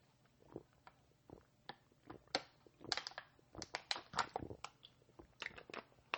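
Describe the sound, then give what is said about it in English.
Someone drinks a sip of water, with a rapid series of sharp, crackly clicks and crunches like a plastic bottle being squeezed, irregular and moderately loud, with no talking. “Just drinking a sip of water.”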